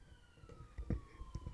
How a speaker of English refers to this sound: Wow. Whoa. Something's going on outside, guys. Dude, holy shit. Yeah. Dude, the other day, like, an ambulance. You hear that ambulance or whatever.